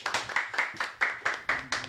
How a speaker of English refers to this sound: Let's welcome her with a clap offering. Let's welcome her.